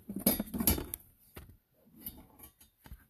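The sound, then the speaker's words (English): A brand-new deck of tarot cards being shuffled: a quick burst of crisp, papery snapping and flicking, followed by a few softer scattered taps and slides, with no voices. “Crappy shuffle.”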